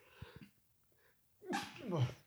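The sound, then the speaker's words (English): A single loud sneeze bursts out after a couple of quick, sharp breaths in, ending with a brief voiced trail. “Bless you. Thank you.”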